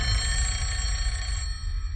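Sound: telephone bell ringing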